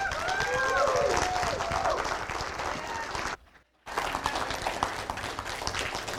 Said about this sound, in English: So how about a round of applause for Pastor Kirk?